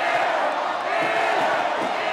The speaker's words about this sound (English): The fans are here to see her. Maryland fans are also making a point to boo her. Every time she sets up for a shot in front of the Maryland student section, crowd taunts her.